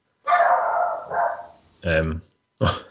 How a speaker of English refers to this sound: When did you get a dog? That is certainly not my dog.